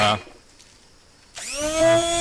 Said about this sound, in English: Okay, well, what we've got here is a Braun blender, a stick blender, or whatever they call them. These things are amazing.